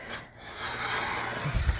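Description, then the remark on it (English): A paper bag being cut to make craft material, a steady, dry rasping and crinkling that runs for about two seconds at an even level, with a couple of soft low bumps near the end. “And let us just cut this off.”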